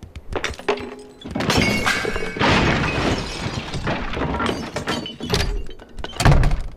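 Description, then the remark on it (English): Game foley of heavy objects dropped at high velocity: they thunk down hard, several dull impacts and clattering crashes piling up over a few seconds, loud, with a final forceful thump near the end. No talking. “I wanted the whole soundscape to be this thing that was really pleasant to listen to, even the if an object is dropped for like a higher velocity, it's nothing really stands out too much.”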